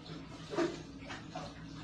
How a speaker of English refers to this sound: Just before washing our glasses, this housekeeper walked into the bathroom. Some water swishes.